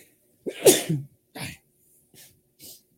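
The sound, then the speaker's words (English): A loud sneeze with a sharp intake and explosive burst, followed by a few short, quieter breathy sniffs trailing off in otherwise silent surroundings. “I gotta sneeze.”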